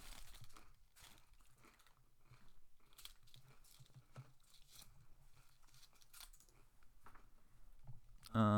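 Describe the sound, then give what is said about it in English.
Crisp crinkling of a plastic wrapper followed by sharp cracking and crunching of a brittle fortune cookie, a steady run of small snaps and rustles at the mic, ending in a louder burst. “Alright, I got another fortune cookie.”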